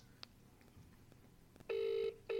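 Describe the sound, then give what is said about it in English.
A telephone ringing tone, loud and steady, comes in two quick electronic bursts after a quiet moment with faint background clicks, like a line ringing out on the other end, as a phone call is being placed. “It's ringing. I know it's ringing.”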